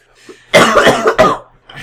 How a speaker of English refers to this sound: Jesus. He's hawking up along into this paper towel. I am so sorry. I told you I'm sick.